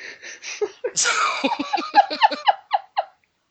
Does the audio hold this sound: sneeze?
yes